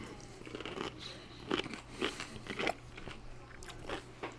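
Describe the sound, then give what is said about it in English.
Crunching and wet chewing as people bite into crisp homemade chamoy pickles, with several sharp crunches around the middle and a steady low hum underneath; no talking. “You can hear us right there crunching on these.”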